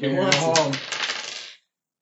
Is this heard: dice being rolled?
yes